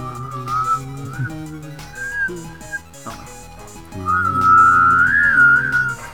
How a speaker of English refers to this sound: Can any of you hum while you whistle?